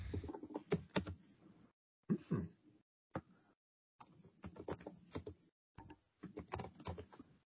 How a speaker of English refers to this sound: See, he's typing something.